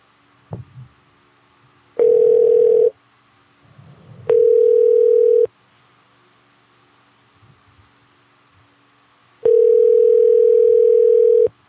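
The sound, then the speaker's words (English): A phone call rings out unanswered: three steady electronic ringback tones, each about a second or two long, separated by longer quiet gaps with faint background noise. “Like, all right, we'll try him back later, y'all.”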